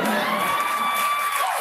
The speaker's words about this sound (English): Everybody's cheering also, for Kamala.